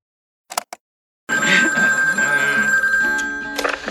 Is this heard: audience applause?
no